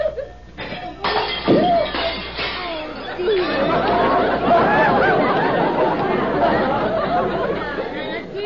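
Dishes, including a gravy boat, slip from someone's hands and crash and shatter on the floor in a few sharp, loud bursts, followed by a long, busy clatter of scattering pieces.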